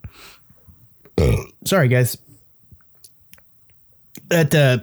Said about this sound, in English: Sorry, I have bad indigestion. I promise I'm going to try to edit as many burps out as possible tonight.